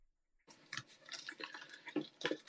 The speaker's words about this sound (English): I'm going to pour a drink then, because it sounds like I'm weeing.